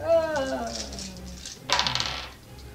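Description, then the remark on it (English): Dice clatter onto a hard floor in a quick burst of sharp, bouncing clicks that rattle to a stop. A voice is heard briefly just before the drop. “Oops. Jack Dice. Doesn't count to my floor.”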